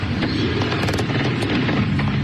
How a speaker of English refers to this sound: Gunfire. Screams. As a horrifying reality set fans, including families, running for their lives.